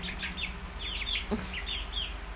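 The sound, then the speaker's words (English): Two small chicks cheep and cluck in quick, repeated high chirps while being handled and walking near an iPhone, with a faint low hum and a brief soft knock partway through. “just pulled one of the chicks away from me.”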